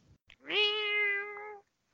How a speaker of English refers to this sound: Your cats? So I was going to say, it sounds like a cat in heat. Oh, the one is. The one is for sure, I think.